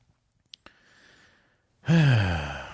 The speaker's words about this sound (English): this pet corrector air horn thingamajiggy is great. It's I don't understand why they hate it so much. It's just a hissing sound. It's crazy that dogs hate this sound so much. Maybe they think it's a giant cobra.